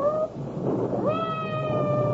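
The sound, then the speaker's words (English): A cat, sounding hungry, meows twice, a short cry and then a long, drawn-out wail, clear over a steady rumbling backdrop like rain or thunder. “I hope that cat isn't trapped somewhere.”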